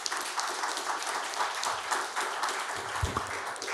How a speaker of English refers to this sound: Let's give a round of applause for these strong mothers.